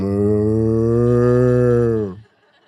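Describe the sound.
A person imitates a cow with one long, steady moo lasting about two seconds, loud, then it cuts off into near silence.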